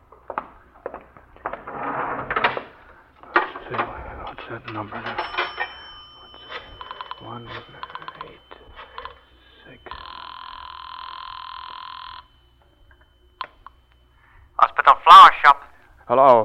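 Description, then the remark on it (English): A telephone on a building floor, in front of a door, is dialed with quick clicking tones, followed by a steady electronic ring tone lasting a couple of seconds; people talk clearly before and briefly after. “I'd have to make another phone call. Well, there's a phone on this floor right in front of Murdoch's door.”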